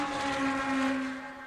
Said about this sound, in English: now down where I actually live, you know, there's the other phenomenon, which is the crappy import car with the exhaust that sounds like a wasp, you know?